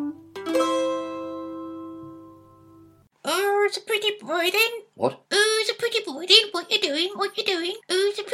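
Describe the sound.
A sustained, fading musical tone gives way to a person in a car speaking in a high, squawky, warbling voice, imitating a talking parrot in several quick bursts, fairly loud.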